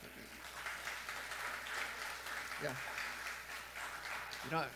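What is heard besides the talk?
audience clapping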